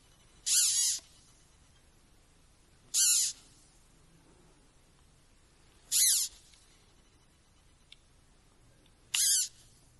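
Four short, shrill squeaky burps from caterpillars, which suck air into the gut and squeak it out; each a brief raspy squeal, spaced roughly three seconds apart against an otherwise quiet background with no talking.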